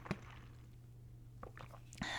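Quiet sipping of water: a few soft wet clicks and a gulp spread over two seconds, over a low steady electrical hum, with a brief burst of noise at the end.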